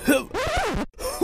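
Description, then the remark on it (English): A voice imitating a bear coughing up a crystal ball: a couple of gruff, throaty hacking bursts, the longest one strained and groaning, fairly loud with a brief silent break. “Zora suddenly coughed up the cursed crystal ball”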